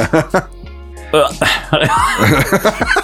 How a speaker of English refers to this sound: I'm just literally clearing my throat. I'm not sick of it yet.